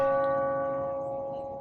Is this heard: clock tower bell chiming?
yes